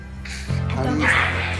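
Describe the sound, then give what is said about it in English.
A small dog gives a short, high yappy bark-whine over a steady low hum with no talking. “My little doggy.”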